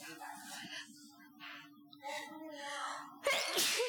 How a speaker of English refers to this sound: Oh, my Let's see, I'm about to sneeze.